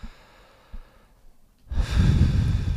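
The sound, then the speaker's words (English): A loud, heavy breath rushes straight into the microphone after a second or so of near-silence, a harsh, close-up exhale with no talking. “The heavy breathing is going to be a feature on this episode.”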